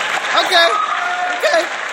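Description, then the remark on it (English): A show audience claps steadily for about two seconds, a dense, even wash of hand claps with voices calling out and talking over it. “Why y'all stop clapping in?”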